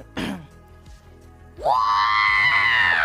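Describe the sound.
A person imitates the R2-D2 robot's electronic scream for a viewer during a live stream: a short vocal burst, then a loud, high-pitched shriek that swoops up and holds steady for over a second, piercing.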